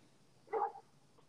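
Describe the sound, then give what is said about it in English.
A single short dog bark rings out outdoors against a quiet background, one sharp woof lasting a fraction of a second with no other sounds around it. “is Mikey yelling at a dog?”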